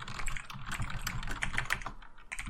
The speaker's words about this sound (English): I wonder who he could be typing to.